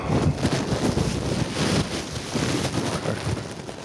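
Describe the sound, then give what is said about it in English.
Muffled rumbling and rustling from inside a bag of honey mustard almonds, a steady, fairly loud rush of low noise with faint crinkly texture, continuing without pause and with no voices. “This is what it sounds like inside the bag of honey mustard almonds.”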